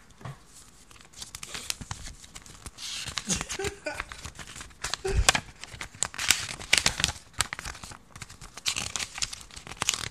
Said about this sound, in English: Should we do some ASMR for them real quick? Alright, guys. We got you. So the first one is flipping through the pages.